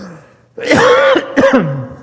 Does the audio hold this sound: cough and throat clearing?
yes